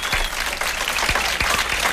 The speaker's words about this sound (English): There's some applause for you there.